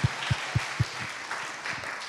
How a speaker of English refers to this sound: My friends, it is a beautiful Sunday, is it not? Yes. Yeah, let's clap for that. Yes.